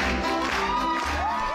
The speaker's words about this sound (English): All that hooting and hollering is for my guest today